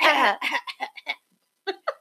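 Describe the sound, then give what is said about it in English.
A loud throat clearing with a raspy burst, followed by a few short voiced bursts that sound like brief laughter or chuckles, then quiet. “Let me clear my throat.”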